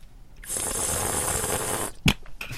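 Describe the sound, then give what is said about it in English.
A long, hissing slurp of air drawn through wine in the mouth to aerate it during a wine tasting lasts over a second, fairly loud, then stops abruptly before a short sharp burst of coughing and a few faint sounds. “And then you want to do that slurpy thing.”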